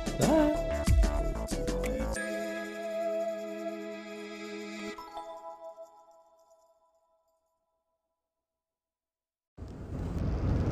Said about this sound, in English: I'm recording an extra thing after the fact. I'm in the car, I'm driving